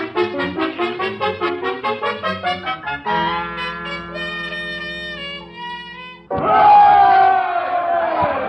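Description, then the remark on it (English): A crowd at a political rally: rhythmic pulsing chants give way to long sustained, horn-like tones over a low drone, then a loud burst of cheering and shouting swells up at the end. “Oh, Chicken, ain't this some rally?”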